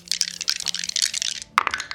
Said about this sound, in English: So let's see. There's like eight dice in there he's rolling.